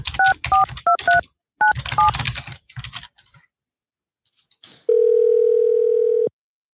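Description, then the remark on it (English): A quick run of about seven telephone keypad dialing beeps as a man dials his wife's number, each a two-tone chirp with a faint button click, followed by a short pause and then one longer steady tone. “Let's see if I can call my wife right here.”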